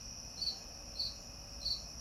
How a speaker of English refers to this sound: And then now the cricket has plenty to say.